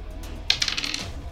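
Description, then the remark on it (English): A quick clatter of dice tumbling and rattling across a hard table surface, a burst of bright clicks lasting about half a second before settling, with no talking. “That's an 18 on the dice again.”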